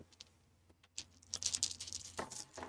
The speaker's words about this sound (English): So let's roll some dice. I suppose you all can roll some dice. I have 6 hard dice.